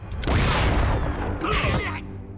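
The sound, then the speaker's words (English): A loud cartoon-style explosion from the last of three landmines Darkwing Duck steps on bursts out with a heavy, rumbling blast, followed by a shorter crackling, whistling burst before it fades. No one speaks. “And that last explosion knocks him into the bad guy”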